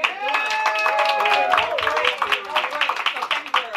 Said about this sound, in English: And I am going to be co-hosting this panel with my amazing host of the event. Give her a little clap.